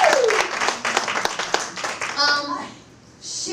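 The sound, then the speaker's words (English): An audience breaks into loud, dense applause for the speaker's husband, many hands clapping rapidly together, then it thins out after a couple of seconds as a few voices call out over the fading claps. “Can y'all give him a big round of applause?”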